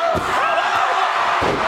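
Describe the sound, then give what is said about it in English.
Batista slams Edge onto the wrestling ring mat with heavy, booming thuds. The deep impacts land a few times over a steady, loud roar from a cheering crowd. “But what a slam to Edge!”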